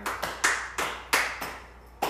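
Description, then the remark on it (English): An audience claps in an uneven, steady rhythm: seven or so sharp, bright slaps over two seconds, each with a short ringing tail. There are no voices. “This is what we as the church, we as the body of Christ, not just True Faith Worship Ministry, but across this nation, we need to be the one they start clapping.”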